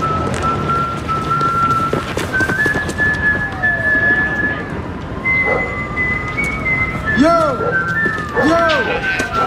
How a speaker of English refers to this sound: You ready with Felix Bautista? We ready for The Wire, the whistle of The Wire? Here we go.